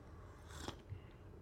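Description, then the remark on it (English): A short slurping sip of hot French press coffee from a darkly colored mug, a quick airy hiss with a faint click near the middle, then quiet. No one speaks. “That was a real strong sip from you there.”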